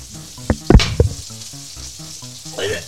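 Smash burger patties sizzle in a pan with a steady, bright hiss. A few sharp clanks and thuds of pressing come early on, and faint music plays underneath.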